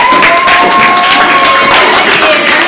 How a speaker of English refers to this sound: Big round of applause for our guests,